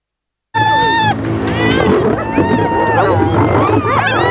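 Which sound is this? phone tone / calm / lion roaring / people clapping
lion roaring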